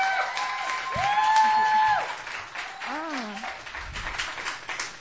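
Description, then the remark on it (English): Audience applause welcoming a first-time performer continues steadily for several seconds, with a few voices whooping and calling out over the clapping. “Please give a first-time welcome.”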